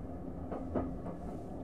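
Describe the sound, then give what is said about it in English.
The Orient Express train rumbles along on the rails, a steady low roar with faint rhythmic clacks and a brief metallic squeal partway through. “All part of the service on the Orient Express.”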